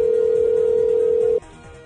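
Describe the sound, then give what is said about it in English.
A steady, unbroken telephone dial tone hums loudly for over a second, then cuts off abruptly, leaving a faint quieter trace. “That's a dial tone for those of you who've never used anything other than a cell phone.”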